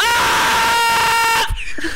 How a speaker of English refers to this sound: It cuts it out because I just screamed and you didn't even hear me. It's going to sound terrible for the podcast. Listen to this. Ready? Yeah. I didn't hear shit. I don't hear shit. I don't hear anything if you're yelling.